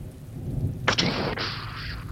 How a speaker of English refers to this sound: That thunder is gone off.